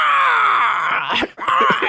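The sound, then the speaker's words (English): A voice imitates the creepy little dinosaur-bird foundling from The Mandalorian, the noise it made coming off the ship, with a loud, shrill, sustained screech that wavers and dips, breaks off briefly, then resumes with a few rough, raspy chirps. “I mean, that's kind of the noise it made when it came off the ship.”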